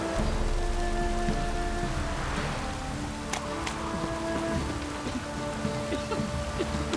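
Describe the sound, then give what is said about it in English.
Steady rain falls over a village throughout, a continuous hiss with scattered drop patter. A few faint higher taps break through, and a soft tonal hum sits underneath. No one speaks. “Oh, it's wet. I'm assuming that's just from the rain.”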